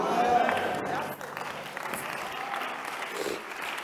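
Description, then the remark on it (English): An audience of Christians claps steadily for Jesus, a dense wash of many hands applauding at an even loudness for the whole stretch, with voices faintly mixed in underneath. “Those who are Christians, they are clapping for Jesus.”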